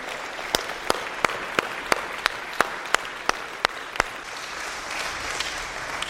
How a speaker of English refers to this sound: Come on and give the Lord a hand clap of praise in this house.